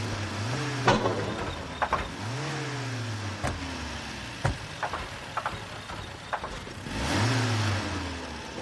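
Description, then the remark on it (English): A car engine with an overheating starter idles with a steady low rumble, revving up in three rising surges, with a few sharp clicks and knocks in between. No one speaks. “And I'm going to need you to turn the engine off.”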